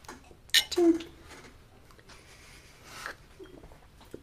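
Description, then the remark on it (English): A single bright clink of drinking glasses holding a drink with mango, pineapple and papaya pieces, touching in a toast, rings out near the start, fairly loud, followed by quiet handling noises and faint background murmur. “So cheers. Cheers.”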